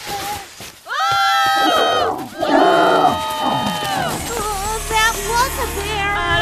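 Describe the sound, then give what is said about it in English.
Several voices scream together in long, loud, sustained bursts as a group opens a tent and runs out screaming, with the yelling continuing in a more scattered, overlapping way toward the end. “I'm going to open the tent, and then we all run out screaming.”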